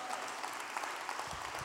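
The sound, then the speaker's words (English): An audience claps during a sermon in a dense, steady patter of many hands, holding an even level throughout without voices, a few low thumps showing near the end. “I am preaching louder than you are clapping.”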